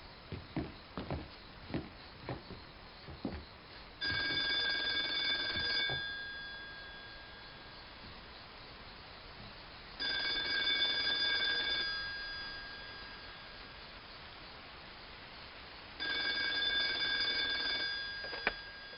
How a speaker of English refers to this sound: I stepped on the porch and the phone rang. The payphone?